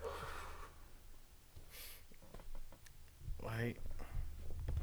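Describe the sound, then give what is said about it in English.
A person imitates heavy, panicked breathing: a few loud, noisy breaths in and out, followed by a strained, voiced gasp. “I started breathing a little heavy,”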